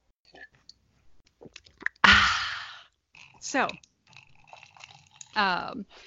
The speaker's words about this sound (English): Sip.